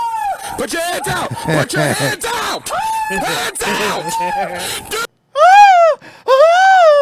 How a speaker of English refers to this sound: Like, it's not even the fact that he's yelling in pain, because that's standard anyway, but like, you know, it's like it's just shrieking like a girl.